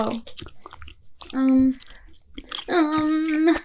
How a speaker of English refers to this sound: Oh, sorry, it sounded like chewing gum directly into the mic.